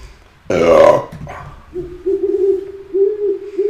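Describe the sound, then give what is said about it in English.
A person imitates an owl: a loud, breathy vocal burst followed by a sustained, wavering low hoot held for a couple of seconds. “Do you speak owl? I do.”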